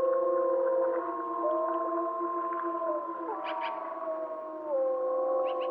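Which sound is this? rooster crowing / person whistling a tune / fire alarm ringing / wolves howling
wolves howling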